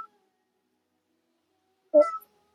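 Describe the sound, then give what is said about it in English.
A single short cat meow sounds once near the end, clear, after a stretch of near silence. No one talks. “My cat says hello.”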